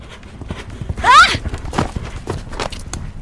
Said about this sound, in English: Just a scared deer. I guess I couldn't really blame the poor thing.